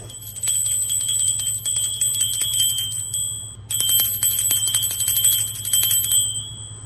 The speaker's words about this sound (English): All right, let's try the bell and see if it works.